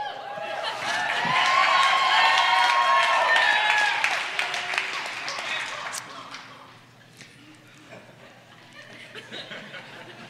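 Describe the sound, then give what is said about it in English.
A large church audience applauds warmly, with scattered cheers and laughter mixed in. The clapping swells loud for the first few seconds, then gradually thins out and fades to a lighter patter. “And that applause, which I greatly appreciate because of the long-standing relationship that we've all had together, is because Jesus is King.”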